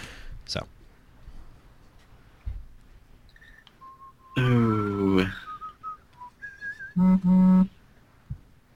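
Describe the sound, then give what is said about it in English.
A phone ringtone goes off, a short electronic melody of bright whistle-like tones with a loud buzzy burst midway and another strong pulsing burst near the end, over faint background noise. “Whose phone? For once, it's not me.”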